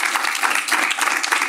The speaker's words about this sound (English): So please give Mr. David McCourt a huge round of applause. Thank you, David.